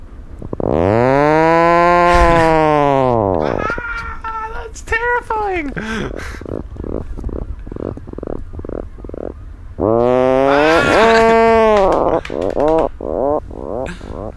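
Puffin calls: a long, loud, droning moan that rises and falls, then a stuttering run of short buzzy grunts. The whole sequence repeats a second time with no talking over it.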